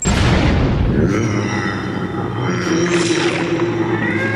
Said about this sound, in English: The explosion was small in radius, but powerful. The blast of kinetic energy violently shook the floor and walls of the beast's stomach.